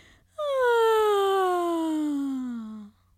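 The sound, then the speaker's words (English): A person imitates a loud monkey yawn: one long, voiced wail that starts high and slides steadily downward in pitch over about two and a half seconds before cutting off. “He stretched his long monkey legs, and he let out a very loud monkey yawn.”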